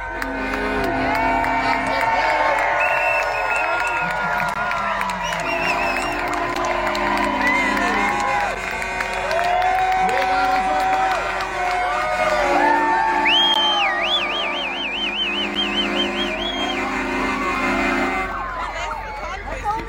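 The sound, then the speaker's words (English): Truck air horns blare in long, overlapping sustained tones at several pitches while a crowd cheers, whoops and shouts throughout, loud and continuous for the whole stretch. “air horns.”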